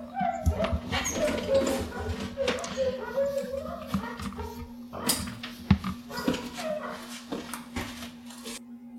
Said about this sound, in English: I think I'll be right back. I got to see what the dogs are going nuts over. Oh my.